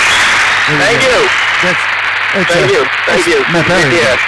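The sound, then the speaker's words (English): A steady wash of applause from a played sound effect runs through the whole clip, a dense, even crackle of clapping, while a man talks over it in short bursts. “That's the wrong applause, actually.”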